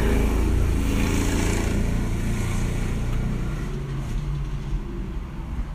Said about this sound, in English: Let me let this truck go by